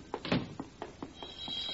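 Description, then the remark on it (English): A telephone bell rings in a quick train of rattling strikes, about eight in under two seconds, bright and fairly loud, with no voices over it. “Oh, the phone.”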